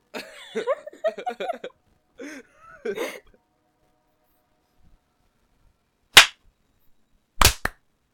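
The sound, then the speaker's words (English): Voices make brief murmurs and throaty sounds, then fall silent. Three sharp group hand claps follow: one loud clap, a pause, then two quick claps close together. “We're gonna clap at the top of the...”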